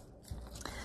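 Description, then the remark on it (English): A good pair of scissors fussy cutting paper: two short, crisp crunching cuts about a third of a second apart, faint and dry, with no talking. “Got myself a good pair of scissors.”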